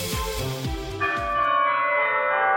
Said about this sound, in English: I do, ding dong! Sound of wedding bells.